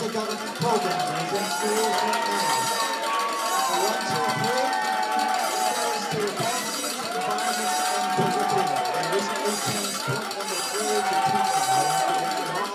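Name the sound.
fire alarm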